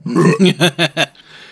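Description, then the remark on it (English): A loud belch, made while rating beers: a long gravelly rumble followed by three shorter voiced pulses in quick succession, then fading into quiet. “2, was that a belch?”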